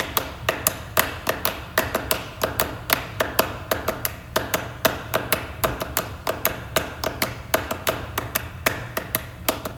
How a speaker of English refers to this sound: Here's a clip of Clapping Music by Steve Reich, which is literally 5 minutes of clapping.